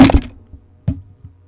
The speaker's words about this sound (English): I just knocked over my microphone. Hold on. And it's new, too. Luckily, it fell on its back.